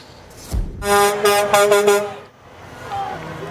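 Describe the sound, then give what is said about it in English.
Loud air horns from a truck convoy converging on Victoria blare together for about a second and a half. The overlapping harmonic blasts pulse slightly over a low engine rumble that continues faintly afterward. “A long and loud convoy from up and down the island converging on Victoria this afternoon.”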